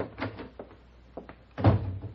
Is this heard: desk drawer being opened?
yes